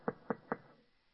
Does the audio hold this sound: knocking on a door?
yes